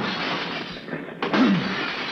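A glass window in the side of a rooftop penthouse is smashed open with a can opener tool during a fire: a sudden sharp crash of breaking glass cuts in partway through, over a steady rushing background noise, with no voices.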